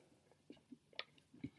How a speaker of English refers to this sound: sorry, I was chewing.